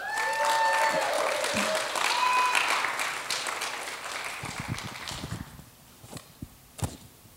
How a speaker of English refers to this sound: Okay, now you can clap.